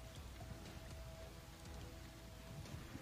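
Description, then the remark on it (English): Steady rain falls continuously, a soft, even patter with scattered drops pattering on a surface, fairly quiet and without any voices. “You'd see the rain hitting something.”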